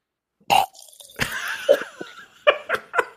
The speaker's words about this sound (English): that is the grossest version of drinking water that I've ever heard in my life.